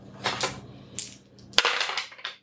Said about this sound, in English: I'm going to roll 3 dice.